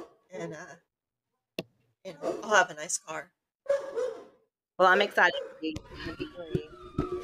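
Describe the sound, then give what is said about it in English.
Dogs bark frantically in sharp, rapid bursts behind a conversation because someone walked by the house, the yapping growing busier toward the end while people keep chatting over it. “Do you hear the dogs going crazy in the background?”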